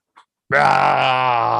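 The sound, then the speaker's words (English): A person imitates a Godzilla roar as a way of saying bye: one loud, sustained, raspy bellow that holds steady for over a second, preceded by a brief faint click. “Rawr! Rawr! That's Godzilla for bye.”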